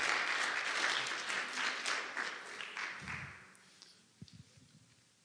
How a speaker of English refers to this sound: Yeah, give him a hand. Clap.